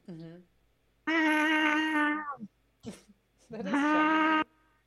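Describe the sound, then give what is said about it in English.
A person imitates Chonky Boy, a cat, giving a short mew followed by two long, loud, drawn-out meows of the same nasal quality, separated by a brief breathy sound. “Because he would just have the same meow over and over and over, like a soundbite.”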